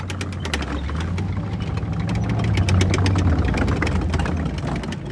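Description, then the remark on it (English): A tank engine idles with a deep, steady rumble and metallic rattling clatter, growing slightly louder midway before settling, continuous with no voices. “They had to build tanks.”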